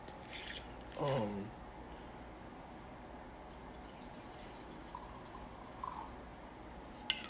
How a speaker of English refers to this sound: As I pour some more Jameson, y'all.